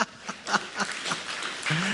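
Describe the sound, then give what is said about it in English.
Scattered audience clapping, soft, with irregular claps over a couple of seconds; a voice briefly comes in near the end. “Yeah, you can clap about that.”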